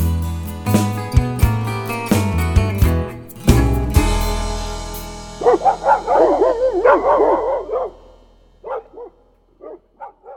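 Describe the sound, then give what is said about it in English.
A short burst of music gives way to hound dogs barking and baying in wavering, howl-like calls, followed by a few sparse yips near the end. “All right, I hear them hound dogs barking, so let's take a bourbon break.”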